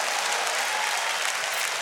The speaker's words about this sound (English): Clap your hands and give praise to God.